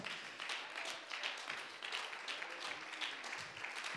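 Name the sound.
audience applauding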